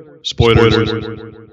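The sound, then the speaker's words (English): The spoken word "spoilers" drenched in an echo effect, its voice repeating in quick, fading copies that smear into a ringing, metallic tail lasting over a second. “We just put an echo on my voice to say spoilers.”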